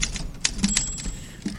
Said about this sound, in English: Can I get a typewriter first